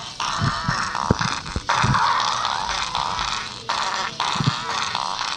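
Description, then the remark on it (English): Fart sound effects chopped into a loud musical remix, with repeated low, blubbery blurts punching through a dense, buzzing backing track. No one talks. “Yeah, it sounds like it's a fart remix.”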